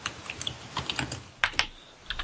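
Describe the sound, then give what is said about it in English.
Quick, uneven clicking of keys on a computer keyboard as "define genial" is typed into Firefox to search Google, a dozen or so light taps with a couple of sharper, louder strokes near the middle, over a faint background hiss. “So I just typed in define and then the genial...”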